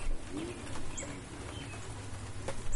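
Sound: bird call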